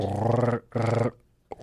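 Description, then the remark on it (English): A person makes two loud, sustained guttural growls from the back of the throat, like a French R rolled with the throat rather than the tongue, each about half a second long with a short pause between, followed by a brief throaty grunt. “Not with your tongue, it's with the back Spanish. Of your throat. So it's, it's like the French R.”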